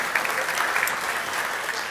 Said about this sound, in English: Let's give them a round of applause for helping us out today.